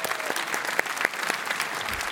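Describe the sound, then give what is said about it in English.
An audience applauds steadily, a dense wash of many hands clapping with a few sharper claps standing out, sustained at an even level throughout without voices. “But we want to give you guys a round of applause.”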